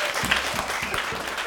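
A crowd applauds two people who held up poles, with steady, dense clapping that holds at an even loudness, many hands blending into a continuous crackling roar with no voices over it.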